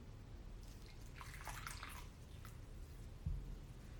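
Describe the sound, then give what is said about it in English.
A short stream of tea pours into a cup for about two seconds, splashing and trickling over a low steady hum, then a single small clunk as things settle. “Let's pour some tea.”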